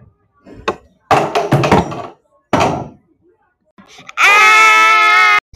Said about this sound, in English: are you gonna stop screaming now?